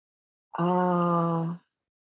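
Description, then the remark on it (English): A single voice chants a sustained "Om" as part of a breathing meditation, holding one steady, resonant pitch for about a second before stopping cleanly. It is clear, with silence on either side. “You can do it with your eyes open and just breathing. Om.”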